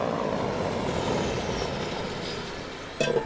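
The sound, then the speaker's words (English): A tiny Department of Fish and Wildlife propeller plane's engine drones steadily at a little airport outside Bishop in the Eastern Sierra while it is loaded with thousands of rainbow trout fingerlings. It is a broad rumbling hum with no talking, then a sudden clatter of brighter noise near the end. “A tiny Department of Fish and Wildlife plane's getting loaded with thousands of rainbow trout fingerlings.”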